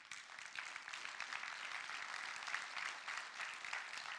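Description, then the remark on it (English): A church audience applauds steadily during a service for several seconds, a dense, even wash of many clapping hands with no voices over it, holding at a fairly constant level throughout. “Just for the record, I got no applause first service, so I'm just saying, okay?”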